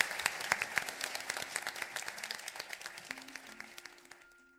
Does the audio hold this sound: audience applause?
yes